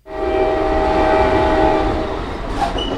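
A train's horn blares in one long, steady chord over the heavy rumble of the passing train, loud, with a brief hiss near the end.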